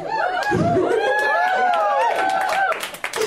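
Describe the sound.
A live comedy show audience responds to jokes with sparse, scattered clapping and a few high, rising woos, mixed with murmuring crowd voices and chatter, fairly loud throughout before thinning out at the end.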